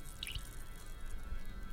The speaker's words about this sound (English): Frantically, you pour the substance into the glass, set down the bottle, and you just gulp. And you are chugging what might be lamb's or pig's blood, but it could be something different.